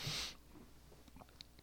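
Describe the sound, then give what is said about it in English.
A brief airy slurp as someone in a group sips hot tea poured from a pot, followed by faint, scattered mouth clicks and small swallowing noises in a quiet setting with no talking. “We're all sipping.”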